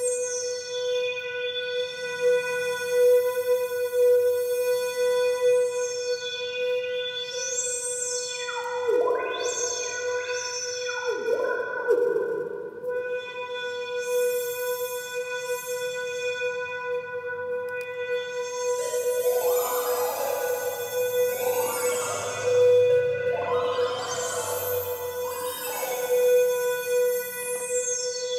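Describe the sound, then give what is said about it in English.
A single synth keyboard note, held with the keyboard in hold mode, stays at one steady pitch while the resonance knob is twisted side to side, so bright, whistling overtones swoop and glide over the drone throughout. “And then if you look at this little resonance knob, it's going to change as I twist side to side.”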